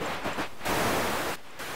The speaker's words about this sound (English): I'll take the radio static as a yes.